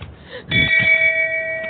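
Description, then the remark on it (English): A single shame bell is struck once, fairly loud, to shame someone for not having watched The Princess Bride, its bright metallic tone ringing on and slowly fading over a soft background murmur. “That shame bell was for Rachel, just so you know.”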